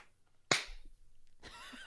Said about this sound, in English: So we're all going to have the clap test. You ready? 3, 2, 1.